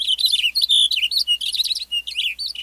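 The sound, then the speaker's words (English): A Cassin's finch sings a rapid, continuous warbling song of bright, tumbling chirps and trills, fairly loud, with no other sounds around it, in an open pine landscape with grass and wildflowers in warm air. “A western bluebird flits from a gnarly branch as a Cassin's finch belts out a rapid song.”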